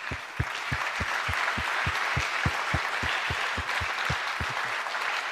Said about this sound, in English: This morning, I just want to honor all the guys that got here early this morning to set this church up. If you guys can just stand, let's just give them a applause.